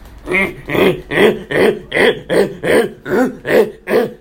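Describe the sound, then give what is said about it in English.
A person's voice imitates baboon calls with about nine loud, rhythmic grunting barks in quick steady succession, each a short throaty whoop, with no other talking. “It's got a pink face. Sounds like this.”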